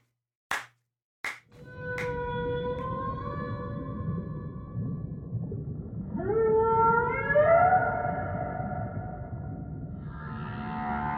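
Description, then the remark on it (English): A whale's long, moaning call with rising, sliding tones over a steady low underwater rumble, preceded by two sharp knocks. No one speaks. “and that got me thinking about the whales.”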